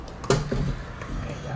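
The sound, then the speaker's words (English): A chair from behind someone is shifted with a sudden wooden clunk as it is brought over, then a short low scrape and rumble across the floor, with faint room noise around it. “Bring the chair to you. It's behind you.”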